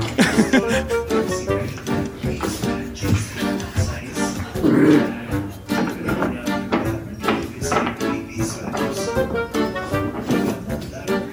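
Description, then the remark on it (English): A puppy barks in a quick run of short, high yaps, fairly loud, over a busy background with other noises mixed in. “Yeah, you should give it up for the puppy.”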